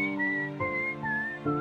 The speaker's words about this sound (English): She whistles a simple but beautiful melody.